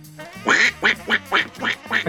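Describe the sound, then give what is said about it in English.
A person imitates a duck, letting out about six raspy, nasal quacks in a quick, steady rhythm, fairly loud with no talking around them. “Can somebody do the duck thing again for me, whoever it was that does it?”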